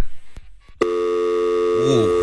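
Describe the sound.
A faint click, then a steady electronic phone tone starts abruptly and drones on unbroken as the line goes dead after a woman on the call hangs up, with a brief voice murmuring over it near the end.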